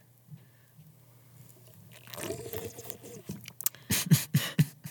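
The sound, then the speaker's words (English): A loud slurping first sip of a latte with butter on top, a drawn-out wet noise that builds and ends in several sharp, smacking bursts, with no one talking. “So here's my first sip of latte.”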